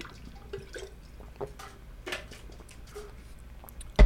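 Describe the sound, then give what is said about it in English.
Someone takes quiet sips of water, with small wet slurps and drips spread over a few seconds, ending in a sudden loud knock like a cup being set down. “Let me take a sip of water here.”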